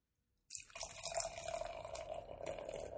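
Beer, a lemongrass brew, starts pouring abruptly and streams steadily into a glass, a continuous gurgling splash with a rising fizzy tone, with no talking.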